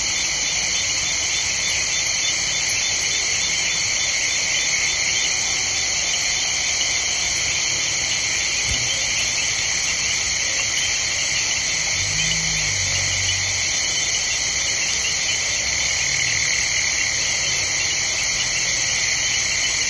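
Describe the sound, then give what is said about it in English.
A dense night chorus of frogs, insects, hippos, bats and other night creatures along the banks of Kenya's River Mara, recorded by an artist, keeps up a steady, shimmering high-pitched trill throughout, with a few faint low calls surfacing briefly partway through. No one speaks. “… recorded this chorus of frogs, insects, hippos, bats, and other creatures of the night for his CD, ….”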